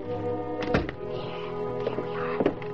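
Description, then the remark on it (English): A closet door is opened and a body is put inside, making a few heavy, dull thunks, a close pair near the start and two more later, heard over a steady humming musical background with no talking. “I'll open the closet door. Put him in right there. Stick him in good.”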